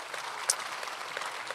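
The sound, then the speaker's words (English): Dense, steady applause from a church crowd, a continuous wash of many hands clapping with one or two sharper claps standing out, without any voices; applauding guests from Radiant Church in Kalamazoo. “So give them a round of applause one more time.”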